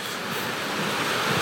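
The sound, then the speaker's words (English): Heavy rain pours down during a sermon in a dense, steady hiss that fills the whole clip, loud and unbroken with a faint low rumble underneath and no voices. “If it rains harder, I'm going to start yelling more.”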